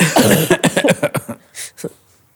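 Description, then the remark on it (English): A burst of harsh coughing: a rapid run of short hacking bursts that taper off, followed by a couple of fainter, breathy coughs. “I need a coughing break.”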